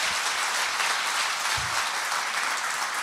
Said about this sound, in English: So keep clapping, keep encouraging her, because it takes a faith and boldness to do this.